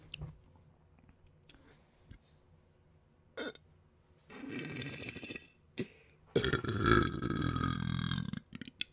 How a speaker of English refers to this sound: Burp. I love burp ASMR. Are you guys ready for some burp ASMR?